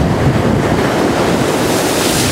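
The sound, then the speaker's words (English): Large ocean waves crash over a flooded, underwater seawall in a loud, continuous roar of churning surf, with gusty wind buffeting the microphone and no voices. “Where else can you see waves like these?”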